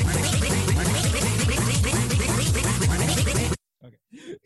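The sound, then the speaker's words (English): Loud dubstep track built from rapid, repeating duck quacks chopped into a heavy rhythmic breakdown, cutting off abruptly, followed by a few brief moments of voices talking. “It's been a while since we've had a duck step breakdown.”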